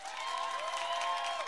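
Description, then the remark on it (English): An audience applauds for the camera in a dense, steady wash of clapping at an even, fairly loud level, with a thin sustained whistle-like tone running faintly through it. “Show it for the camera. Applause.”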